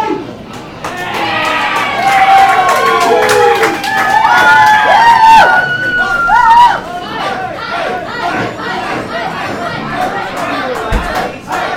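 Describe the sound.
A loud crowd roars and cheers for the Hype, with overlapping shouts and whoops rising over a dense wall of voices, then easing into a steadier hum of excited chatter toward the end.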